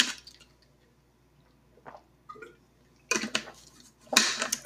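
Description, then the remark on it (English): Someone takes a sip of water: soft wet mouth and swallowing noises, then two louder bursts of rustling and gulping near the end, with no talking. “We're going to read from Proverbs chapter 4 again while I take a sip of water.”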